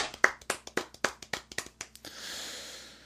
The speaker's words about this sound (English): Let's give a golf clap.